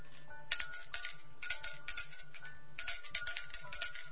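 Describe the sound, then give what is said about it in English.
A small hand bell rings briskly in several quick bursts of bright, metallic jingling, with short pauses between shakes. Fairly loud, with no talking. “Would you like to ring the bell of change?”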